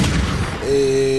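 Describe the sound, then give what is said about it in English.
A loud, booming gunshot sound effect bursts out full, then gives way to a steady sustained tone ringing on to the end, with no one talking. “Oh, no, you got a gunshot ready?”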